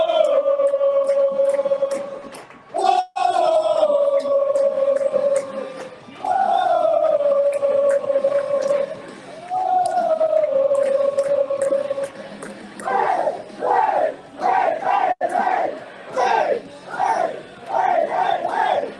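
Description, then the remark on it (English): A packed bar crowd of about 60 people roars in celebration after a goal, loud, with long sustained yells that give way to rhythmic, pulsing bursts of chanting and shouting toward the end, while the goal song plays over a speaker. “I loved just hearing the crowd erupt because obviously you can only see, you know, about 8 to 10 people in that video just because of the view.”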